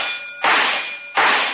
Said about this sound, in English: Aim carefully at the target and fire three times in succession. If you hit the bullseye, the bell will ring.